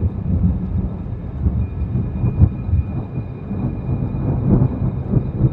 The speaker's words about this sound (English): Just as we turned around, we all heard a strange sound that almost sounded like quieted thunder slash metal hitting metal.